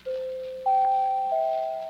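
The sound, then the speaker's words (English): A new doorbell at a house chimes three rising tones in quick succession, each ringing clear and sustained so the notes overlap and hang in the air, loud with no voices. “New doorbell, too.”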